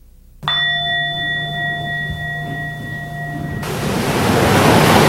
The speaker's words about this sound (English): Surfers love the ocean, and when the big waves are breaking, they get especially reverent.